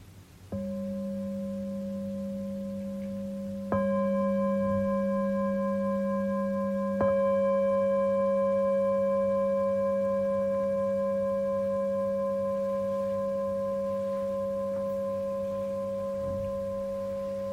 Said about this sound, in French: Parfois aussi, quand la cloche sonne, il y a quelque chose tout à coup qui soit sourd, se ferme, se tend ou se détend.